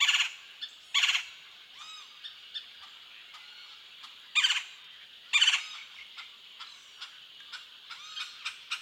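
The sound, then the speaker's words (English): Vibrant rolling whirr calls of a golden-fronted woodpecker burst out in a handful of loud, buzzy bouts, separated by quieter chattering notes and pauses, with no voices present. “the vibrant whirr calls of a golden-fronted woodpecker, a Mexican species that ranges into Texas.”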